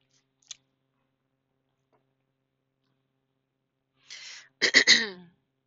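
sipping tea

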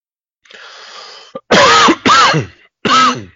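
dry cough

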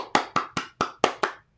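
hand clapping

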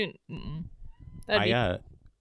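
cat meowing

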